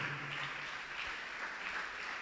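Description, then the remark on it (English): A church audience claps continuously for a man called to the front, a dense, steady wash of many hands with no pauses or distinct beats and no voices rising above it. “Keep clapping for him.”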